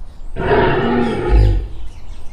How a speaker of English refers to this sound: Mishti is very scared as they hear a lion roar loudly.